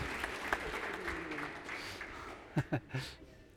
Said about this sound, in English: Thanks, mate. Round of applause